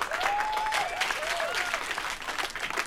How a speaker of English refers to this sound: So let's get a round of applause